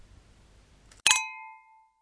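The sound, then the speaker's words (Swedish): A single bright, bell-like telephone ring strikes once after near silence as a call is placed to a home phone, its metallic tone ringing out clearly and fading away over about a second. No voices are heard. “Jag var helt enkelt tvungen att ringa upp”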